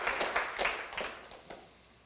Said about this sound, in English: Give the Lord another great hand clap.